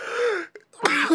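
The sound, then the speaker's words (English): A harsh cough bursts out after a strained, voiced sound, followed by raspy throat noises, like someone caught in a brief coughing spell. “You got me coughing and shit.”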